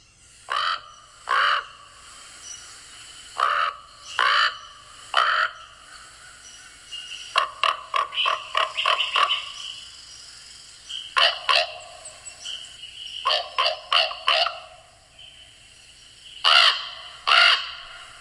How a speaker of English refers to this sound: But first of all, the raven is a, I think croak is a good word, kind of a growl. They can get pretty loud and noisy too, but it's definitely more of a croak. So here is your common raven.